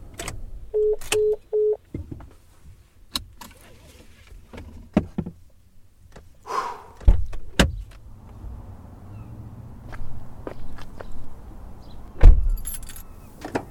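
Someone climbs out of a white truck: three short electronic beeps, a series of clicks and rustles, a jingle of keys, then a solid door thump near the end over a low idling rumble.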